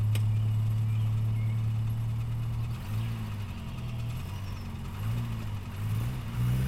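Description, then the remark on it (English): The engine of Tommy Long's Bentley rumbles loudly, holding a steady idle before revving up and down in a few uneven surges as it pulls away, driving to Possum's garage at the south end of the track. “Everyone filed into Tommy Long's Bentley and zipped down to Possum's garage at the south end of the track.”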